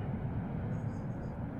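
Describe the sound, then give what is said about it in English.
A steady, heavy roar of the jet engines of a Salian Wealth helo jet fills the whole moment, a deep continuous rumble that stays loud without letting up. “You squint your eyes and manage the light, and the message repeats itself once more, now audible even over the roaring of the jets.”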